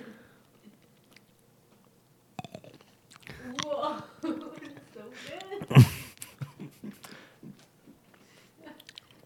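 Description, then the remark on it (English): Crisp chewing: a sharp bite followed by several seconds of crunchy, irregular mastication, with a louder crunch partway through and quieter chewing trailing off. “This is going to be a crunchy one.”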